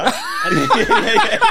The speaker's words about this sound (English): I'm coughing now. It's your fault. Yeah. It's contagious.